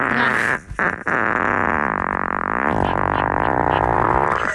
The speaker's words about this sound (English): Oh, that fart definitely had pink eye in it.